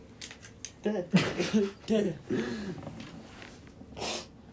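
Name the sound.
sniffling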